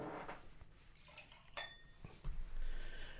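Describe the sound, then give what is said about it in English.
A glass clinks and is rinsed, then the rinse water is poured and splashes into a bucket, the liquid sloshing steadily toward the end. Fairly quiet, with no talking. “I'm going to rinse that. I'll pour the rinse into.”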